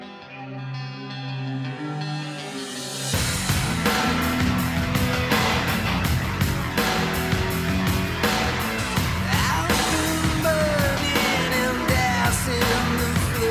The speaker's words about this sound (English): Very industrial drums. This is for the vocal distortion on the chorus. Oh. Yeah, a lot of synth in there.